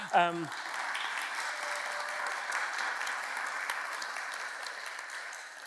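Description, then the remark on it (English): A brief spoken voice at the start gives way to steady applause from a group in the room, a dense patter of many hands clapping at an even level for about five seconds, a quick applause for Debs, who read the scripture and is joining online. “There's a quick applause in the room to Debs.”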